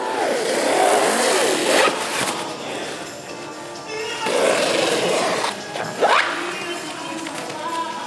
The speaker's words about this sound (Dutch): Hij besluit het oranje deel eraf te halen. Ik ga het nu doen. Hij pakt een schaar en snijdt in een paar tellen het werk naar een kleiner formaat.